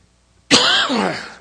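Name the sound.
coughing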